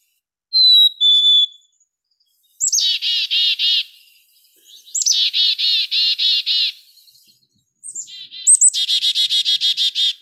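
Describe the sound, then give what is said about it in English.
A black-capped chickadee sings, opening with a clear two-note whistle, then three bursts of rapid, buzzy chick-a-dee-dee notes, fairly loud, with short pauses between and no talking. “that was indeed a black-capped chickadee, and they have a couple different songs”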